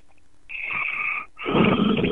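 A man snores loudly and close by: two harsh, rasping breaths in a row, the second rougher and fuller than the first, with no talking.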